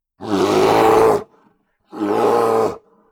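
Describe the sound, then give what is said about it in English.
Two loud, rumbling creature roars, each about a second long with a short pause between them, harsh with a growling, throaty texture and no talking. “A roar, but not the roar of a Hork-Bajir.”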